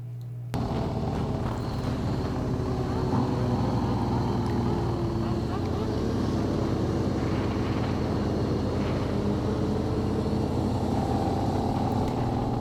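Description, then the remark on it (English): Loud, steady roar of motorcycle engines rumbling along a road as bikers pass by, a continuous low drone with rough texture that stays constant for the whole stretch, with no talking. “And so what this officer decided to do, as you know, these bikers were passing by, they didn't appear to be adhering to the move over law, and he pulled out pepper spray and sprayed them as they're riding.”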